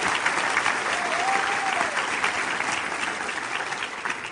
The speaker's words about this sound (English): So, yes, give this round of applause.